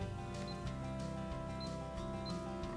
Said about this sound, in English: You can hear a little click, unlock it, and door's open. Nice, huh?